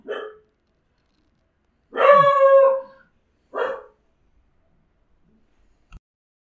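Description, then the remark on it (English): A dog barks a few times with a drawn-out, howling yelp in the middle, the calls separated by short pauses, followed by a faint click near the end. “There was a dog. I heard him.”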